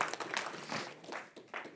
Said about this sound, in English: Let's give the Lord applause for that.